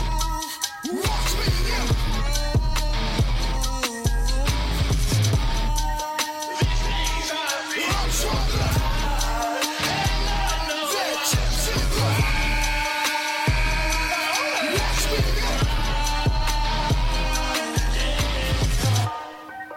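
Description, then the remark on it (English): A loud, dense rap track with heavy booming bass and hard beats, topped by harsh, strained screamed vocals performed by the rapper himself on the hook, carrying on through the whole stretch without pause. “Let the hook play out some screaming.”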